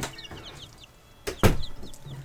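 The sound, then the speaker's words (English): Small birds chirp indoors in an office, a steady scatter of short, high peeps throughout, with a couple of louder bumps or rustles midway. No one speaks. “why is there chirping in my office?”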